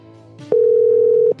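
A single loud, steady electronic ringback tone from a phone call, holding one even pitch for under a second before cutting off, with only faint background noise around it.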